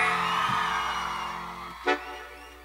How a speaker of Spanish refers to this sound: Y como se está grabando en vivo, queremos un grito de las mujeres.